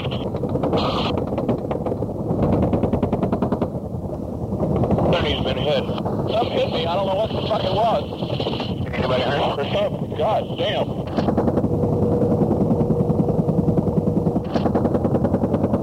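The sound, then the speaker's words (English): Rapid bursts of machine gun fire crackle at practically point-blank range during a helicopter firefight with a North Vietnamese soldier, over a loud, constant roar like rotor wash and wind, with shouting voices breaking through the din. “You can hear all the machine gun chatter.”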